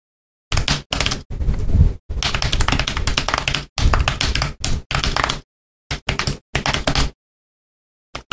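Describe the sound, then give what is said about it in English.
Heavy, rapid typing on a computer keyboard, loud, coming in dense bursts of clacking keys separated by short pauses, with a few brief flurries trailing off at the end. “Do you kill your keyboards?”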